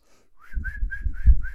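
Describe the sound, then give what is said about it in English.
A bottlenose dolphin's signature whistle, its unique acoustic identifier, repeats five times in quick succession, each a short, bright, wavering tone, over a low watery rumble. “Dolphins explored urine samples for longer if they came from known animals or when they were presented together with the dolphin's unique and distinctive signature whistle.”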